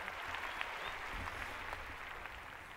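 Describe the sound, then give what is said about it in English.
A studio audience applauds steadily as a guest is welcomed onto a show, a dense wash of clapping that stays even and sustained for a few seconds, with no one talking over it. “Was that a tennis crowd?”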